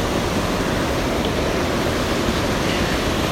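Steady, full-bodied rush of river water pouring over a big, slightly submerged log lying across the river, the water washing over its top; a continuous roar with no pauses and no voices.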